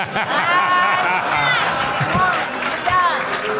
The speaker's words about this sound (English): Whoa. Stop booing it, my friend! That was a great show!